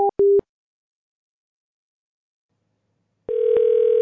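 A couple of short electronic telephone beeps, then a pause of silence, followed by a steady, continuous dial tone humming loudly to the end, with a faint click partway through. No one speaks.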